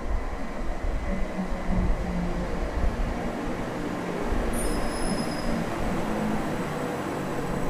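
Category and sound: vehicle, train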